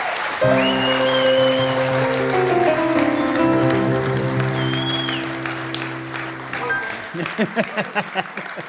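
An audience applauds with a steady, dense crackle of clapping while sustained musical chords play underneath, then the music drops away and the clapping thins out at the end.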